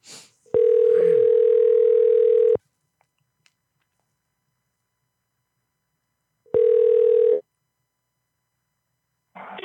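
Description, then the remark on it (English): A phone line's ringback tone purrs twice, each steady ring lasting about two seconds with a long silent gap between, and nobody answers. Faint bits of voice appear at the edges. “I wish you picked up.”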